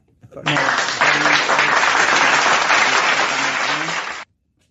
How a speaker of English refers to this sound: Can you applaud that shit? That's fucking way cool.